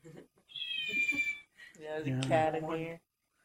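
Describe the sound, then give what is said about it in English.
A cat meows twice: a thin, high-pitched cry, then a longer, louder, drawn-out yowl that rises and falls before stopping. “Cat in here. Shut up.”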